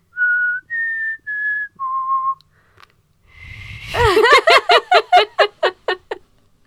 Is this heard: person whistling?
yes